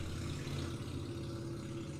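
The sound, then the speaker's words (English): A motorcycle being revved outside a house: the engine rumbles steadily outdoors, a low, even drone with a throbbing hum and no sharp rise in pitch, with no one talking. “There is some real, real cool dude outside of my house revving a motorcycle, and I refuse to close the window because it is super goddamn hot in here.”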